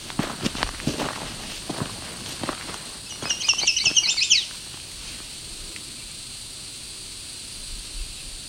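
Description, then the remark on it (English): A loud, rapid bird trill rings out from one of a few trees on open flats for about a second and a half, following a series of crunchy footsteps, then the scene settles into quiet outdoor background noise. “I think a bird that loud would be very obvious.”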